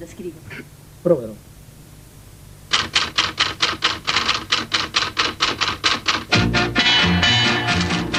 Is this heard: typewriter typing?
yes